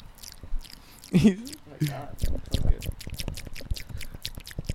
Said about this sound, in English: Can we try to let the mic pick up my cotton mouth?